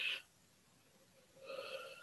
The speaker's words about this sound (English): I'm sorry that I'm yawning a lot. I expel energy when I'm doing that, and I had a big, big day today so far, and I am releasing.